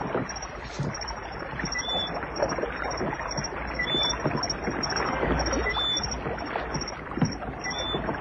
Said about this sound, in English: You'll never hear us swimming against the splash of his oars.